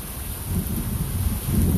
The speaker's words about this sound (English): As the rain is falling, just imagine all your stress and worrying just falling away. Just washing away.